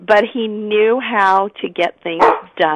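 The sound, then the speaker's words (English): A dog barks a few times in short, sharp bursts while a man keeps talking over it, the barking moderately loud. “Oh, sorry about my dog.”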